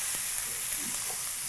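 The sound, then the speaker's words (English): Chicken browning in hot oil sizzles steadily, a continuous bright crackling hiss with no break and no voices over it. “Oh my God, he finished browning the chicken. I'm browning, bro. Do we need more oil?”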